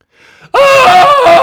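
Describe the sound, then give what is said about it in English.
A faint breathy intake is followed by a sudden, loud human scream at the top of the lungs, high-pitched and sustained for about a second with a slight waver in pitch, by a person alone in a bunker, with no talking. “I've always wanted to scream my lungs out on this show.”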